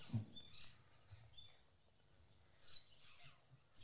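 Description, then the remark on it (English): Several faint, high-pitched chirps from unidentified birds sound at scattered moments over a quiet outdoor background, brief calls with no talking. “Not quite sure what those ones are.”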